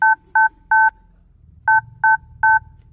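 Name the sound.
telephone keypad dialing tones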